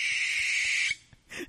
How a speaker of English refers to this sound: Yeah, these are owl sounds I'll be playing throughout the show. Did you know that that's what an owl sounds like?